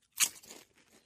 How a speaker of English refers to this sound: So we're gonna give this a whirl. This is Lay's potato chips. That's right. Salty, fatty, crunchy, yumminess.